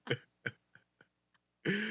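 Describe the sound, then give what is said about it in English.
A fit of coughing: two sharp, loud coughs, then a few quieter, trailing ones, before a voice breaks in with a drawn-out vocal exclamation. “No, you guys just made fun of my cough.”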